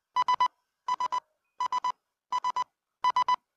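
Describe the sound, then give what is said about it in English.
A cheap smartwatch alarm, set off by accident, beeps in quick bursts of three, repeating five times at an even pace. The tones are bright, buzzy and mid-pitched, with no talking over them. “I hit a freaking alarm.”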